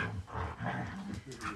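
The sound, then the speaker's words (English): Dogs play-fighting, trading rough growls and grumbling vocal bursts in a steady, continuous stretch with no talking. “We're doing a podcast with dogs.”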